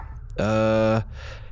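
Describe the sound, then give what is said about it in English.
A dog gives a single drawn-out, tonal bark, fairly loud, lasting just over half a second against an otherwise quiet background. “Nice doggy? Nice space doggy? On our animal-free station?”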